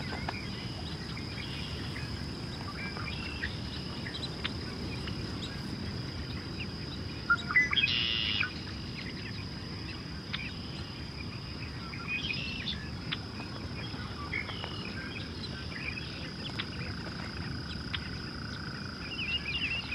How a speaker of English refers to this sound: That ringing call was from another shorebird, a lesser yellowlegs. Built similarly to the blackneck still, but with a brown mottled body and bright yellow legs.